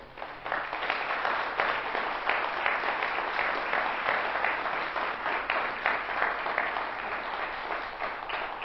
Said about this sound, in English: And why don't you stand up real quick and so we can give you a hand clap.